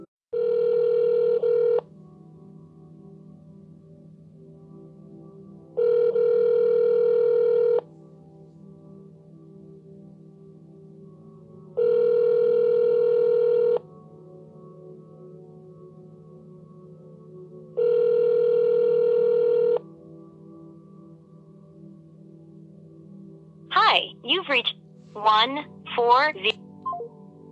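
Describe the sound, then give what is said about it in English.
An outgoing call rings four times, each steady two-second ringback tone spaced evenly over a low line hum, before a voice briefly picks up and speaks at the end. “That's why we was playing phone tag.”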